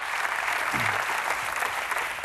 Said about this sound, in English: And while you are in the clapping mood, why don't you welcome all of our guests and welcome everybody.